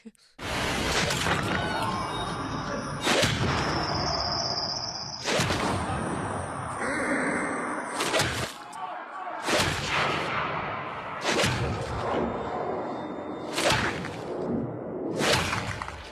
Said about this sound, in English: Melon being crushed sound. Right, just smashing sounds. In fact, I'm going to play those sounds for you now.